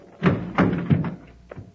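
A heavy chamber door swings shut with a series of dull, solid thunks and clanks as it is latched and secured, fairly loud, then a final lighter knock.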